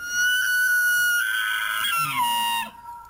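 An elk calls with a loud, high, whistling bugle rich in overtones. It holds steady for a couple of seconds, then slides downward, with a lower groaning tone briefly underneath near the end.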